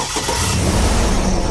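A 6-liter V8 engine with its battery removed is started by a NOCO Genius Boost lithium jump starter hooked directly to the battery cables; it cranks and roars to life, settling into a loud, deep rumbling idle with steady low-end throb, continuous with no talking.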